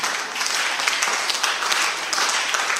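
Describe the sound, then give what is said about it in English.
An audience applauds steadily during a sermon, many hands clapping at once in a dense, loud wash of claps that stays even for the whole stretch with no voices on top. “You see, when you clap, you are not clapping for me.”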